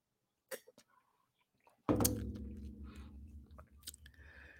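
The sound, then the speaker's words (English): A soft click, then a loud sip from a drink with wet mouth and swallowing noises and a low rumbling handling sound that lingers for a few seconds. Nobody speaks. “We're going to pause. Take me a little sip.”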